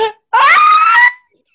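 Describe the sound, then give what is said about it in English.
A woman lets out a single loud, high-pitched scream of disgust lasting under a second, with a brief vocal sound just before it. “I can actually scream.”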